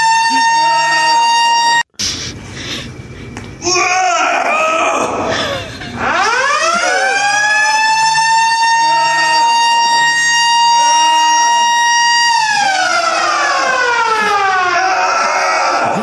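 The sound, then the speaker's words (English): A loud gym lunk alarm siren winds up sharply, holds a blaring steady tone for several seconds, then slides back down. Muffled noise and voices come before it starts. “They set off that giant fire alarm in there.”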